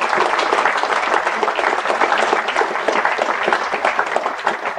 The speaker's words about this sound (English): I wonder how many of those people he listed who are the event organizers are in the audience filling up the chairs. That's how you get the claps. You just mention the people in the audience.